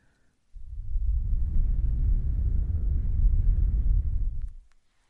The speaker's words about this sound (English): Can you hear the wind blowing more? Your left one or right one?